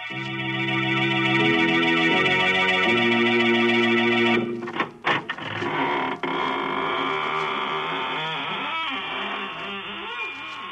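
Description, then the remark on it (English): A sustained organ-like chord gives way to a long, slow, drawn-out creak and squeak of a door, loud and wavering in pitch for several seconds. “This is your horror host at the squeaking door of the Inner Sanctum.”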